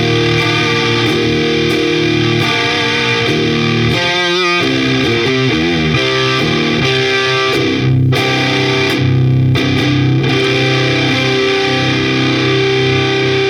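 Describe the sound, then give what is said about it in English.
An electric guitar played through the In Your Face Germanium Fuzz pedal by The Sound of Justice FX, with fuzz and output dimed and clarity and pre-gain at 2 o'clock: thick, saturated sustained distorted chords, a few quick bending note runs, and brief choppy stops, steady and loud throughout with no voices. “On the In Your Face Germanium Fuzz by The Sound of Justice FX, we have the fuzz and the output is dimed, and then we have the clarity and the pre-gain at 2 o'clock, and it sounds awesome.”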